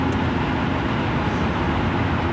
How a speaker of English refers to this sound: There's two cars going down the road. One's a Honda something, and the other one's a, I don't know, probably a, I can't tell because it's nighttime, but I can't tell because of the lights.